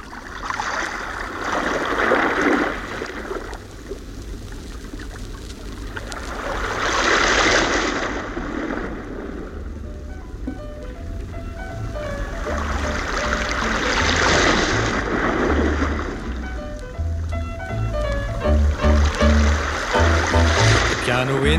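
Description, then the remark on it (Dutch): Ocean surf rolls in at a beach with three broad, hissing swells that build and recede every few seconds, fairly loud, while faint melodic tones creep in toward the end. “You can hear the surf rolling in.”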